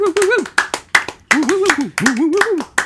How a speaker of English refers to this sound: Keep clapping. Woo, woo, woo.